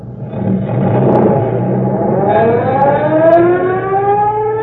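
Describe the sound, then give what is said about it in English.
A fire engine siren winds up and wails steadily as the truck sets off for a fire, its rising tone climbing over a low engine rumble and churning motor noise as the truck pulls away. “All aboard, boys! Let her roar!”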